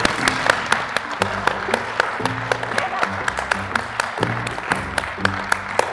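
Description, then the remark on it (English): A live audience applauds steadily for several seconds for the executive producer, many hands clapping in a dense, overlapping patter, with voices murmuring and calling out underneath. “And I hope you all give a round of applause for our executive producer”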